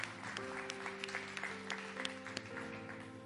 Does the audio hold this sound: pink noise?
no